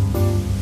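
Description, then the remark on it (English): Rain falling as a steady, continuous hiss with no breaks, over a low, constant hum. There is no talking. “It's raining.”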